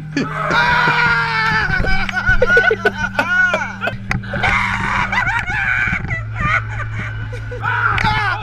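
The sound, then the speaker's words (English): High-pitched screams and wailing shrieks come from between the walls of a Halloween haunted house attraction, rising and falling over a steady low droning hum, with frantic voices mixed in, filling most of the stretch in repeated bursts. “Well, there's screaming coming from between the walls.”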